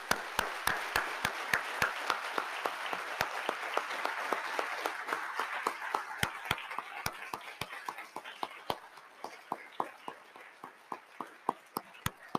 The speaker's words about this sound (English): If we could just have our seniors stand really quickly and a round of applause for all these seniors.